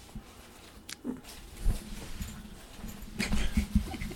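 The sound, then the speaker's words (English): A dog plays with a toy that has plastic inside to make it crinkly, producing scattered bursts of crunching and rustling that cluster more densely toward the end, moderately loud, with no talking. “Our dog's playing with a toy that has plastic inside of it to make it crinkly crunchy.”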